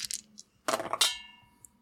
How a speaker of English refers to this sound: You're adding a die because it's your devil's bargain. Oh, so I can roll. I roll three dice?